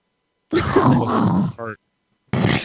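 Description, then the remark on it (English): A loud, rough throat clearing rasps for about a second, ending in a short voiced grunt, then silence before another harsh, phlegmy burst starts up. “You got some phlegm in your throat?”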